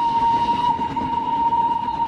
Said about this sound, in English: I am now tied to a railway line in deepest Wales. There's a train rushing towards me.